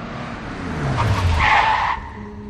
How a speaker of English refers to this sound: After I'd driven a good distance from the house, being pursued by this phantom car, I slammed on the brakes.